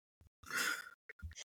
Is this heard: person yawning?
yes